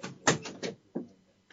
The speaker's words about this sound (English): I don't know if you just heard the door open there.